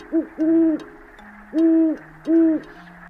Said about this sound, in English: Owls, they like to hoot.